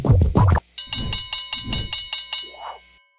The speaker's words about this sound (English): There we go. Right. The bell has now gone. We're in the after hours.